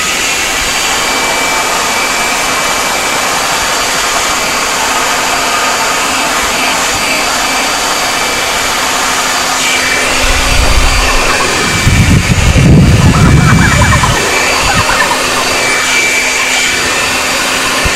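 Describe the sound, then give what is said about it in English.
A leaf blower runs continuously with a loud, steady motorized roar and high whine, swelling into a deeper, more forceful rush for a few seconds near the end before settling back. “Are you ready to try leaf blower versus vagina?”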